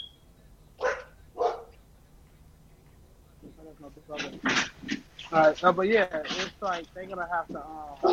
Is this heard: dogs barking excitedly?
yes